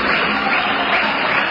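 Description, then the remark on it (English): An audience of hundreds claps steadily in a building with about three tiers and stalls while waiting for an opening ceremony to start, a dense wash of applause with no break, fairly loud and continuous throughout the short stretch. “Well, the audience are clapping, waiting for the opening ceremony to start.”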